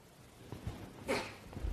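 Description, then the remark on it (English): A single sharp sneeze bursts out around the middle, a quick breathy explosion standing out from a quiet room background, with faint soft sounds before and after. “Bless you.”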